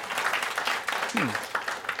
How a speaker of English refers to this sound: Yeah, we celebrate that, okay? Oh, that's modest and a golf clap.